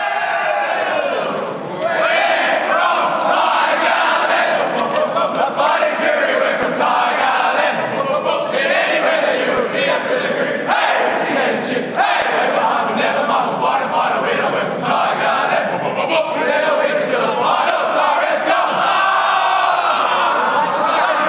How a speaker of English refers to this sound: But for now, we'll leave you with the winning song from the Richmond Lions.